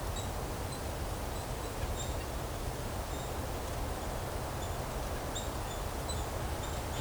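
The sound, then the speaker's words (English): Faint, short nasal squeaking calls of two nuthatches foraging and climbing down trees in a maple woodlot with tapped trees repeat irregularly throughout, over a steady hiss of wind and rustling woodland background. “A little bit of a nasal squeak. Getting closer. Oh, 2 of them now.”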